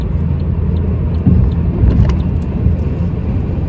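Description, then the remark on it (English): Tires rumble steadily on the road from inside a moving car, a loud continuous low-pitched drone with slight surges. No one speaks. “I know how this world works, and it feels like my tire is like bumpity bumpity right now.”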